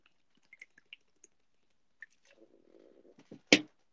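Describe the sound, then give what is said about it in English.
Quiet mouth clicks, then a short wet slurp of drink and a sharp gulp or swallow at the end, as someone sips a drink to review it; no talking. “I'm not gonna lie though, I'm gonna take one or two more sips to really just soak it all in and give a full product review.”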